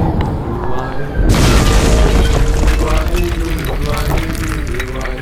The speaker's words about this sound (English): The boulder slammed into the ground.